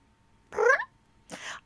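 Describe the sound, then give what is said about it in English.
A cat that has just come out from under a couch meows twice, a drawn-out, wavering call followed after a short pause by a softer, breathier one, with no talking around them. “look that who came the... out from under the couch. Oh, hi, kitty.”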